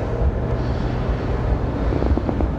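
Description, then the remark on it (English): Steady low rumble of a Jeep Wrangler driving home from work in thick traffic, with wind buffeting the microphone and a few faint mid-range tones near the end. No one speaks. “And as always, I'm leaving work and I'm driving my Jeep Wrangler home.”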